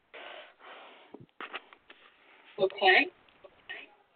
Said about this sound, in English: I'm shuffling the cards for three.